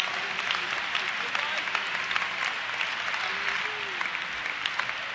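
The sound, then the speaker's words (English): An audience claps their hands together in steady, dense applause for several seconds to give the Lord praise, with faint voices calling out beneath the clapping. “Can you clap your hands and give the Lord praise?”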